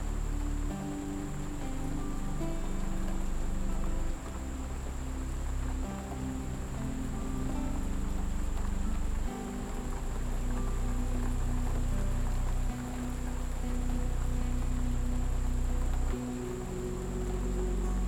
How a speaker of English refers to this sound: Can you hear the rain? Listen.